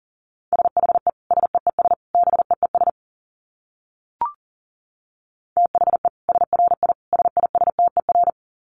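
Rapid Morse code at about 40 words per minute: a steady mid-pitched tone keyed into quick dits and dahs, two bursts separated by a pause with a single faint click between them.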